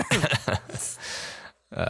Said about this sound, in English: I have that same cough.